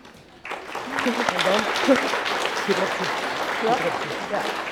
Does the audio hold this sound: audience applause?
yes